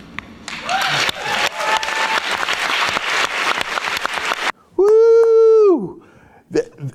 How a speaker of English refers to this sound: They're applauding racism.